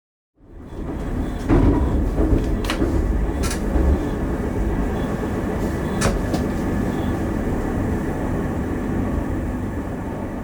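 A train rumbles steadily along rail track, a continuous low roar with sharp metallic clacks and squeals breaking through at irregular moments. It sounds fairly loud, with no voices.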